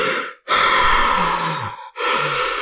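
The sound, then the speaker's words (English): A voice imitates the heavy, creepy breathing of a person looking through binoculars: three loud, rasping breaths, each separated by a brief pause, with no words spoken. “And the person's breathing real heavy, too.”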